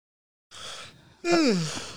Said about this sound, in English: I know. I just fucking yawned. Give me a break. Very rude. I just yawned.